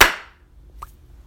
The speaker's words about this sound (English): We do 3, 2, 1 clap, right? Yeah. I sit there with my hands already up at the ready.